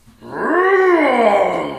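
A single drawn-out roar from a monster of grotesque appearance, a loud, throaty groaning bellow that swells, arcs up in pitch, then slowly sags and fades, with no talking.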